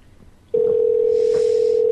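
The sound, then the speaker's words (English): After a half second of quiet background, a steady, loud telephone dial tone switches on and holds at an unbroken pitch through the end. “We'll call him back.”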